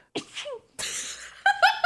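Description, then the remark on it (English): A small, dainty sneeze, fairly soft: a quick inhaled catch followed by a brief airy burst, then a few short breathy sniffs trailing off. “Just paused for a sneeze, and that was a very dainty sneeze.”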